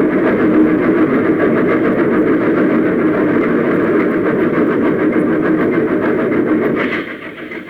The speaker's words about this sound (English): He was still standing when the train plunged into the smoke-filled shaft.